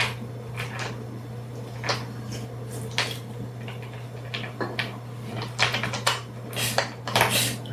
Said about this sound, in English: You're really, really nice to that guy next to you. He's like doing the dice rolling for you.